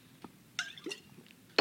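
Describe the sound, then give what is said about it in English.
A bottle of water being handled into a microphone during a church service: a few sharp, irregular crackles and knocks spread over a second and a half, ending in a loud burst. No one speaks. “That's really loud into that microphone. I'm sorry. A bottle of water was much quieter last service.”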